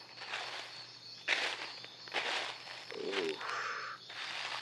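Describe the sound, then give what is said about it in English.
Slow footsteps crunch over dry ground or leaves as someone approaches a deer carcass, several uneven steps with short pauses between them, over a faint steady outdoor hum. No one speaks. “And as I say that, I'm approaching the carcass now.”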